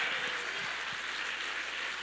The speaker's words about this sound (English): Clap your hands, y'all. She got victory today.